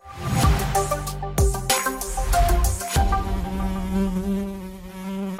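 A housefly buzzes steadily, its droning hum rising and falling in pitch as it circles, with no voices present.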